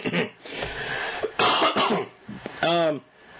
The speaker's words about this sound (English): Excuse me. I got a little bit of a dry throat. So if you hear me clear my throat, I'm trying to clear it away from the mic.